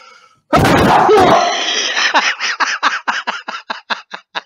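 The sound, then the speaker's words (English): A loud, explosive sneeze bursts out, then trails into a rapid string of about a dozen short, rhythmic breathy bursts that gradually soften. No one speaks. “You're sneezing and I'm coughing and coronavirus.”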